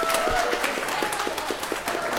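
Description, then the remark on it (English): An audience at a cosplay event bursts into steady applause for the cosplayers, many hands clapping in a dense, crackling wash that holds at an even loudness throughout, with a faint tonal hum running underneath. “Big round of applause for our cosplayers.”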